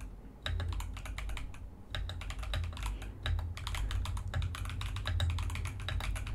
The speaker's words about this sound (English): Okay, so let's start some typing sounds.